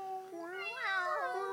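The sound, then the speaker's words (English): Four Siamese cats surrounding a person caterwaul, one loud, drawn-out yowling meow that rises and bends in pitch for over a second, with no talking. “They're surrounding me. Those are Siamese, aren't they?”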